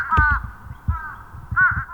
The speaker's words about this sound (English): the fish crow can be dismissed for Halloween, given its less-than-scary, nasal, Fran Drescher-esque call